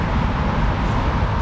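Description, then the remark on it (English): Cars rolling over a bridge make a steady, heavy low rumble with a broad hiss on top, continuous and fairly loud for the whole stretch, with no voices. “You can hear the cars going over the bridge.”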